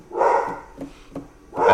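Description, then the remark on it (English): A dog barks loudly, two full barks about a second apart with a couple of short, softer yips in between, and no talking over it. “Sorry, my dog's going nuts.”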